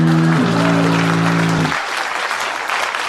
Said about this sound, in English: Please clap.